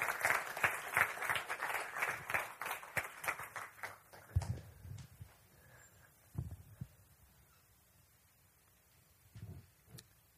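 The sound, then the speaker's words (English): A crowd claps for roughly four seconds, a dense patter of many hands that quickly thins out, followed by a few scattered low thumps and near silence. The audience is applauding a high school student as he comes up to share his testimony. “if we can give him a round of applause as he comes up to share.”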